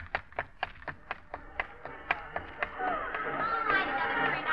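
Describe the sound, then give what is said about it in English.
A brass band at the head of a parade comes up a street lined with crowds: a steady run of sharp, evenly spaced beats like a marching drum, then a swell of brass tones rising in to join the rhythm, growing fuller toward the end. “The crowds lining the curbs outside and down the street coming towards you is the brass band at the head of a parade.”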